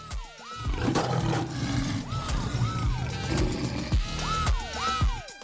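A lion roars loudly in several long, rumbling bursts with rising and falling growls, filling the whole stretch with no voices.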